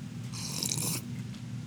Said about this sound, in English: Before I go any further, let me grab a sip of coffee